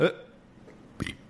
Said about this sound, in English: Excuse me. Was it a hiccup burp? A little hiccup burp. I had pizza and marshmallows.